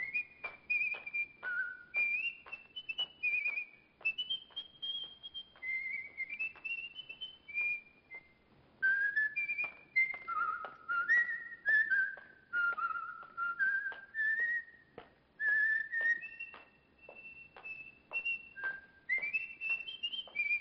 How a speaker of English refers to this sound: It sounds like he's whistling, you should see me dance a polka.